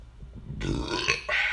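A single loud, drawn-out burp rumbles, starting low and then breaking into a rougher, raspier tail that lasts about a second.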